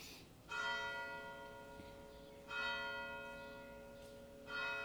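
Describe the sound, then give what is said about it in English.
A church bell tolls three times at a slow, steady pace about two seconds apart, each deep strike ringing out and overlapping the next, with no talking. “So I feel like this is, the bells are telling me it's time.”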